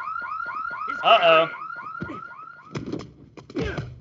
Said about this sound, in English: Metal detectors went off